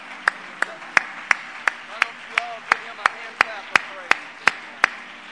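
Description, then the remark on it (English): Steady, rhythmic hand clapping in unison, about fifteen crisp claps at an even tempo, with faint voices murmuring underneath as an audience claps in praise of God during a morning church service. “Why don't you all give him a hand clap of praise this morning?”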